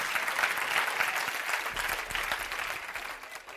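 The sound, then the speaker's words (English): An audience claps their hands during a sermon in a steady, dense burst of applause that holds at an even loudness throughout, with no voices standing out. “Clap your hands.”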